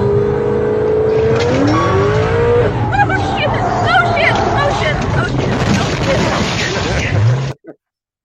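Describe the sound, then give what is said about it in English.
A car engine revs and accelerates hard on curvy roads with no barriers, its pitch climbing as it catches up to the cars in front, then roars steadily at high speed with road noise while voices murmur underneath, before cutting off abruptly. “See how far the cars are in front of us? Right. Watch how fast they catch up.”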